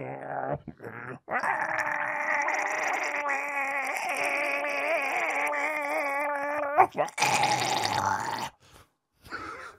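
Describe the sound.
A voice imitates Billy Goat Gruff bleating out a song: a long, quavering, wobbly-pitched warble held for several seconds, then a short rougher vocal burst before it stops.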